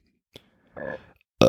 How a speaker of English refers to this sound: And you burp.